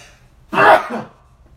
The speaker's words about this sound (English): 25 minutes into my podcast and I sneezed. I was doing so good. No yawning. Very little ums. No burping. And boom. We're into a sneeze.